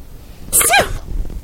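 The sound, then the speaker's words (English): A single tiny, high-pitched sneeze, a quick sharp burst that ends in a short squeaky tail, with nothing else around it. “Tiny little sweet sneeze.”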